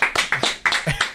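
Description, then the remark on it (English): Sparse, thin applause for journalist Jay Rayner as he is introduced as a guest on the programme: a handful of uneven hand claps, moderately loud, tapering off after about a second with no cheering. “The scant applause.”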